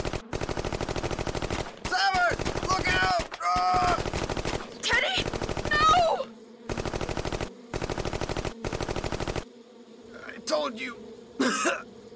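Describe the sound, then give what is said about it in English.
Repeated bursts of rapid automatic gunfire shooting at bees, each burst lasting about a second, separated by short pauses, with voices shouting and exclaiming between and over the loud volleys. “Damn it, bees are hard to shoot.”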